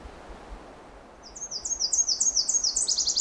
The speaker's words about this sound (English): So I'm just on my way out of this section of the Bruce Peninsula National Park. And we got another Nashville warbler.